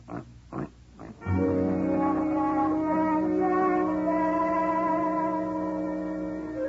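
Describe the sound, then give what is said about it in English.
A pig called Mr. Yun, belonging to the neighbour Mrs. Yun, gives a few quick, rough grunts, then breaks into a long, sustained, loud squealing oink that holds for several seconds, with a slightly echoey, processed ring. “Except that Mrs. Yun's husband happens to be a pig.”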